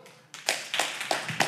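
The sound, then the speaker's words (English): A short burst of audience applause: after a brief quiet moment, many hands start clapping together, giving a dense, bright patter with a few sharper claps standing out in a loose, steady rhythm. “Clap it up.”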